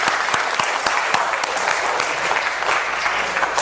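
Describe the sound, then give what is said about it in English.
An audience applauds a group of children steadily, a dense wash of clapping with sharp individual claps popping out at the start, staying loud and even throughout with no talking over it. “Let's give these kids a rounding applause.”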